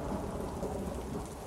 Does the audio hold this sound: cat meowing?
no